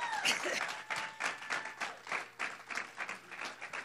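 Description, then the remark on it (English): A crowd applauds with steady, dense clapping, a few whoops and voices mixed in beneath the sustained round of applause. “But I want you guys to give one more round of applause for him because he really does deserve it.”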